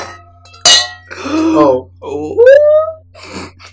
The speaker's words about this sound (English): Oh my gosh, did you hear the magical three-way clink? You are witnessing a threesome.